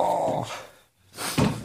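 A dog growls in two rough, rumbling bursts separated by a short silent pause, the second one starting lower and louder, with no talking.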